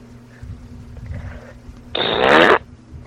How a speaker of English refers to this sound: Let's hear your best fart sound effect.